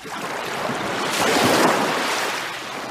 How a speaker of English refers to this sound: What's that? Swimming pool. Waves. The beach. Right. Just the beach.